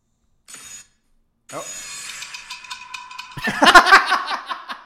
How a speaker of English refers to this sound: Those are some handy-dandy RuPaul's Drag Race sound effects. Although we've heard that sound effect in other reality shows, too.